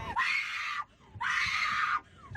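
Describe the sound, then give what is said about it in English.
A woman's loud, shrill screams from a played recording, in long sustained bursts: two full cries separated by a brief gasp-like pause and a third starting, with no talking over them. “Screaming this BS.”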